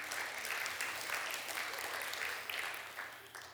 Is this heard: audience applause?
yes